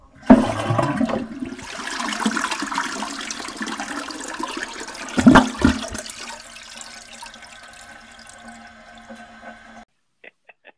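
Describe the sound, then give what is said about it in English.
A toilet flushes with a loud rushing whoosh, followed by swirling water that fades into a steady refilling hiss before cutting off, with a couple of faint clicks at the end. “You're getting the flush. Sploosh. Gurgle, gurgle, gurgle, gurgle, gurgle.”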